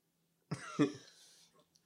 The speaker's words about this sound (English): I'm coughing from laughing.